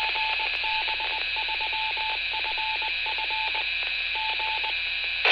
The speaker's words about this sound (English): that was the repeater, GB3FF, that you were listening to there, the Morse ident, which they transmit every so often